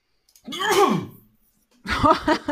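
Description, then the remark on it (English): A single loud sneeze with a voiced, downward-sliding cry. After a short silence, a person starts talking. “Bless you”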